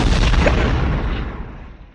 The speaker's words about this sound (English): Or I forgot that I was just going to throw an explosion between every round.